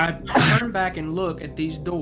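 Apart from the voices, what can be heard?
sneeze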